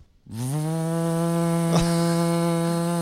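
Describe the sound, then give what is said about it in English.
A vacuum cleaner switches on in a recording studio, its motor quickly whining up to a steady pitch, then holding a loud, even buzzing drone with a single brief click partway through. No one speaks. “Vacuum going one dude on.”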